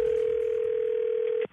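A steady, unbroken telephone dial tone hums at a single mid pitch for about a second and a half, then cuts off abruptly with a faint click, as a phone call to a fiancé is started.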